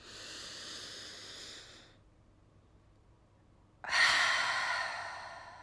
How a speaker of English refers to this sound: Let's pause for a moment and take a nice, deep, slow, intentional, mindful breath. And let's do that again.